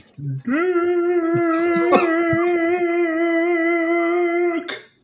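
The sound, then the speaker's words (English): A dog lets out a long, steady whining howl, fairly loud, holding one high pitch for about four seconds before breaking off, with faint thumps underneath. “my dog wants to play right now.”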